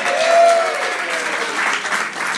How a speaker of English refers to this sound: Applause.